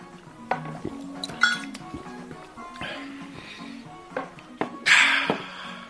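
Beer glasses clink together several times in quick, scattered knocks during a toast, bright, amid light tabletop clatter and a soft murmur in the background, with a short fizzing rush near the end.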